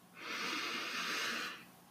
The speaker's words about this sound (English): Now, deep breath in.